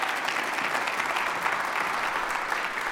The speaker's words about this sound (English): It's pretty great, isn't it? This is what you've done. Yeah, you should applaud.